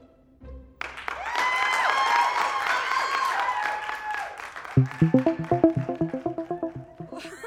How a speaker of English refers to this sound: That applause was a rush. Yes, I'm totally used to getting applause like that all the time.